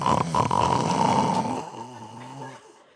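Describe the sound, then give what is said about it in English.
A man vocally imitates a loud, drawn-out snore let out by someone in an audience during a pause in preaching, a rough rattling rasp for about a second and a half that trails off into a lower, softer voiced groan. “And in that very moment, Somebody in the audience let out the loudest, longest snore I've ever heard.”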